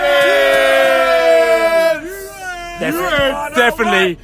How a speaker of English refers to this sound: Definitely happy for the bees. You can hear there on the train, bees fans properly happy after this result. You know what I'm saying? I think Brentford have won away, and all the bees fans are telling you exactly how it goes.